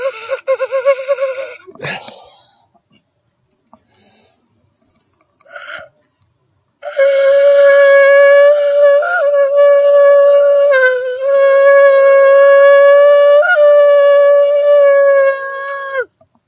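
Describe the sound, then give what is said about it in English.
A shofar is blown as an alarm: a short blast and a brief note early on, then a long, steady, buzzy horn tone held for about nine seconds with slight wavering pitch breaks, loud and alone. “Sounding of my shofar, blowing the alarm, blowing the trumpet.”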